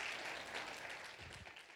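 An audience at a morning church service bursts into sustained applause as a hand clap of praise to the Lord, a dense wash of many hands clapping at steady volume, with a few low voice murmurs rising underneath partway through.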